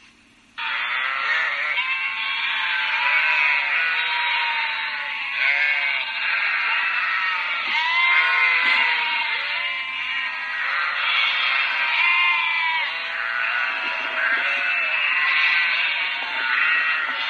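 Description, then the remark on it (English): A loud, chaotic chorus of many sheep bleating at once in panic as a fox appears, overlapping cries rising and falling continuously, with no pause for the whole stretch. “Just listen to the bedlam that resulted with these sheep going their own way.”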